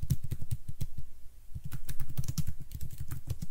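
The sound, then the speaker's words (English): Rapid clicking of keys on a computer keyboard as someone types a description, fairly loud, in quick irregular bursts with a brief pause partway through. No one speaks. “both of you need to start talking because I'm typing.”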